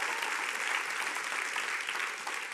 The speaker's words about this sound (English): So thank you for being here, and thank you for clapping.